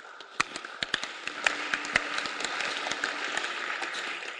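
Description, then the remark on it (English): An audience claps steadily, a dense wash of many hands with a few sharper, louder claps standing out near the start before settling into an even patter. “As you are clapping, you should also join in praying.”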